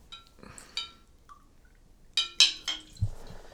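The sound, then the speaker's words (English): Glasses of whiskey clink together in a holiday toast, a few light taps followed by a cluster of louder, ringing clinks, then a dull thump as a glass is set down. “Cheers, gentlemen, to a late Merry Christmas to you all, and cheers, for being everybody.”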